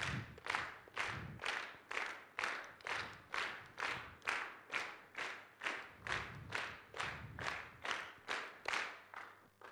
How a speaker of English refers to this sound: We're going to do 20 claps. So you got to be good at counting. And you're going to stay on the beat. Here we go. 1, 2, I need 20. 1, 2, ready, go.